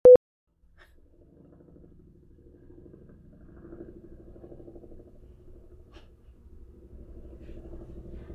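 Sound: helicopter passing overhead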